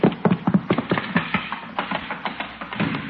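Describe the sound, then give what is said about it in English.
A horse's hooves clatter across a hard floor inside a house in a quick, uneven run of sharp knocking steps, fairly loud and steady for about three seconds, with no voices. “Hey, that sounded like a horse.”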